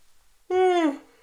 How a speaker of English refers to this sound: Man, what a very inopportune time for my body to force me to yawn. I'm very sorry.